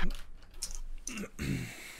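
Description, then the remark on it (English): Four dice rattle and clatter, rolled for a knife attack roll in a game, tumbling in quick bursts of sharp clicks and scrapes over about two seconds, with a faint murmur of voice underneath. “This is 2, so that's a total of 4 dice that I'm rolling.”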